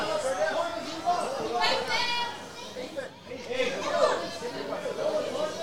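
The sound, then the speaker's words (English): A crowd of spectators along the boundary, touchline and fence calls out and chatters continuously, with overlapping voices rising and falling as they cheer on boys and girls playing in a youth match involving Escol Park, some children's voices mixed in. “You can hear the crowd encouraging all of these boys and girls on.”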